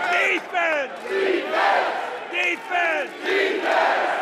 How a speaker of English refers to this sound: The following year, during halftime of an Indiana game against Purdue, Knight walked onto the court at Assembly Hall to a standing ovation. He didn't speak, but led the crowd in his signature chant.